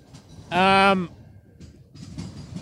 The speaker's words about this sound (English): I don't know. I think we have a BNSF Burlington Northern Santa Fe engine.